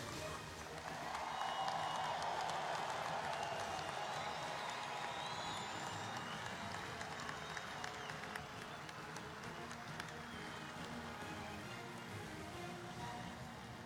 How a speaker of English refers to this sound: Once again, let's have a big round of applause for ….